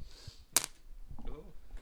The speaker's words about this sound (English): Right, should we crack on then? Yes, shall we roll the dice? Yes, let's roll the die.